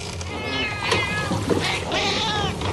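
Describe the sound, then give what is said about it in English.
A cat meows in drawn-out, wavering, almost speech-like yowls, several in a row with rising and falling pitch, loud over a low steady background hum. “A talking cat.”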